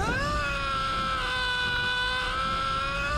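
A single loud, drawn-out scream from a movie, held at a nearly flat pitch for about three seconds, sounding stiff and theatrical like badly acted film screaming, unbroken with no talking.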